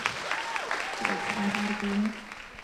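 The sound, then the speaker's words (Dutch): Warm applause from an audience in Eindhoven for the city's 16-year-old junior city poet: dense, steady clapping that holds at a fairly even loudness throughout, with a few voices calling out over it. “Ik geef haar een warm applaus.”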